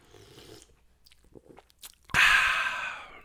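Faint mouth clicks in near silence, then one loud slurping sip of hot coffee that hisses on for about a second before stopping.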